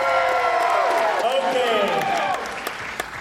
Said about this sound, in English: Are you ready? Give this one a round of applause. Give this one a round of applause.